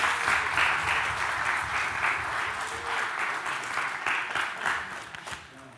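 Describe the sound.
Sustained audience applause, a dense wash of many hands clapping steadily for several seconds, fairly loud and even, tapering slightly at the end with faint voices underneath.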